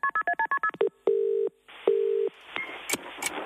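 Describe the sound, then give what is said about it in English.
A quick run of about seven touch-tone beeps as a random phone number in Auckland, on the North Island, is dialed, then two longer low ringing tones and a burst of line hiss with faint clicks. “They're going to be calling the North Island, a random number in Auckland”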